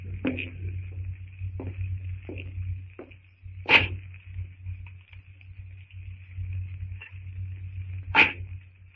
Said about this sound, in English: The sound of Greystoke's axe echoes through the strangely silent jungle. Greystoke doesn't notice the fearful tenseness of the silence.